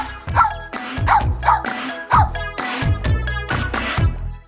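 A dog barks loudly and repeatedly, around eight sharp barks in quick, fairly steady succession with no talking.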